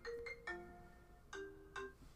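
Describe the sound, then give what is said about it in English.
A phone ringtone for an incoming call from Andrew plays a bright melodic chime, several tonal notes with sharp attacks repeating in a short pattern, clear with no talking. “Why am I getting a phone call from Andrew?”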